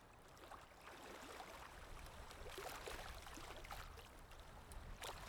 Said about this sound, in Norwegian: Akkurat her og nå, mens du lytter til stemmen min, og mens du lytter til vannet I bakgrunnen. Og vann, det har en beroligende effekt.